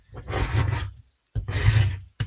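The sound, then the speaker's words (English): A window scraper dragged across a glass palette to clean it, in two gritty, rasping strokes of about a second each, with a third just beginning at the end. Fairly loud, with no talking. “This window scraper.”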